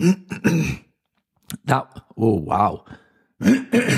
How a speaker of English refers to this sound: I'm going to get on to talk about that in a little second, the coughing and spluttering.